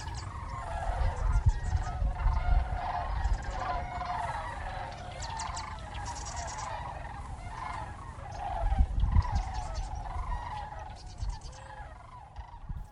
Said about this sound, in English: This past week when I went outside to walk, I heard something I wasn't expecting. Sandhill cranes. They make the most unique sound.